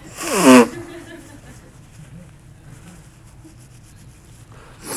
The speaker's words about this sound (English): When they finally arrive, oh gosh, I'm so tired of blowing my nose.